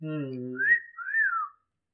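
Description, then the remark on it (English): A voice imitates bizarre whistling: a brief hummed vocal tone slides into two high, wavering whistled glides, rising then falling, fairly loud, ending abruptly into silence. “He then started speaking in tongues and making bizarre whistling sounds.”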